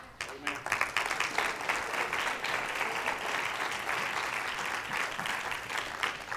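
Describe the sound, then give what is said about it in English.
An audience applauds their mothers, breaking into sustained applause, a dense wash of many hands clapping that starts sharply, holds steady for several seconds, and stays fairly loud throughout. “I tell you what, you ought to applaud your mother today for being such a good mama.”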